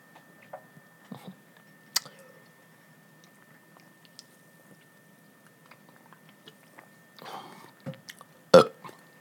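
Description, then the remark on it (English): Wet mouth sounds and slurping sips of a drink with soft clicks and smacks, scattered irregularly over quiet background, ending in a louder gulping burst. “Sipping sounds. ASMR sipping sounds.”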